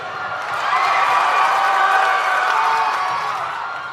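Steady applause from a crowd, a dense wash of clapping that swells in the first half-second and holds loud for about four seconds with no voices over it.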